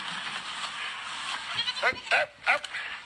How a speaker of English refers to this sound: Outside this door is a bunch of goats who want to storm the castle.